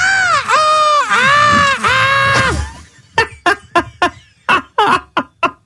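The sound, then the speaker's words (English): A voice imitates a dog's pained scream with four loud, shrill, wavering yelps in quick succession, then breaks into a run of short, sharp bursts that sound like laughter. “when you hear that scream, do you feel sorry for her?”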